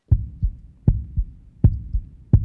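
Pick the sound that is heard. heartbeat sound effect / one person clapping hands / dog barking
heartbeat sound effect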